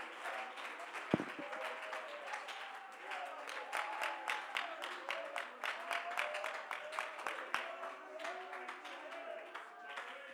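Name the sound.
audience clapping hands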